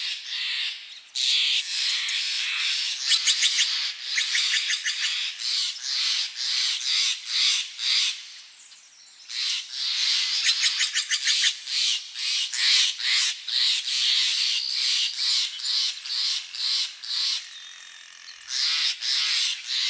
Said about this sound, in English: We leave you this week just north of Marin County, along the banks of the Russian River. Now, there are many songbirds that call the Russian River home, and one day Ed Herman recorded as many as he could. Here's a sampling.